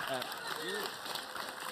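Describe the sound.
A crowd applauds with steady, dense clapping throughout, and a few brief voices or cheers rise over it near the start.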